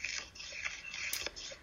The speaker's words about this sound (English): So instead of, are you shuffling loads of paper? Pardon me? You shuffling loads of paper? It sounds like there's loads of. Oh my, I'm moving my hand and I'm listening so intently.